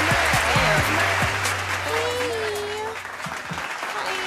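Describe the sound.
Clapping fills the whole clip as a steady, fairly loud wash, with a voice and some tonal sounds mixed in underneath, fading slightly toward the end.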